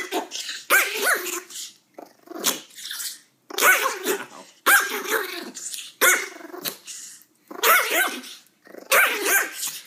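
A dog barks and growls in a string of about seven loud, rough bursts, each separated by short pauses, fairly steady in rhythm throughout.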